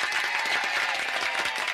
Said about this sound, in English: In fact, I'm going to give you the applause of the day,